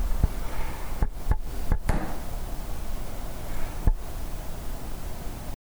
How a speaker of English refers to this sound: When I asked about Chloe, I heard a clear tapping, or rapping, like knocking. And it was in a pattern too, wasn't it?